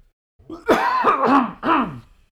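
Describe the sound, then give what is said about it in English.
A person clears their throat in a few quick, gravelly bursts, fairly loud, with no talking during the sound. “Sorry, I need to clear my throat for this one.”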